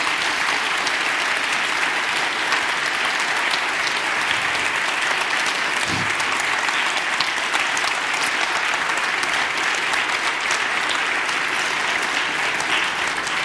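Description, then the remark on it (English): An audience applauds steadily at the end of a speech, a dense, continuous wash of clapping that holds at an even, fairly loud level throughout without fading. “Your applause means that maybe the European publics also are realizing that this is a problem.”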